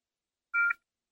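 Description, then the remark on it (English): A single short telephone keypad tone while phoning someone, a clean two-pitch beep lasting about a quarter second, heard alone against silence with no talking. “Yo, I thought we should phone you and just give you a hail up, but we need to spend some time with you.”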